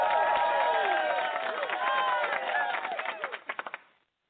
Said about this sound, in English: Give it a high buzz of applause one more time here.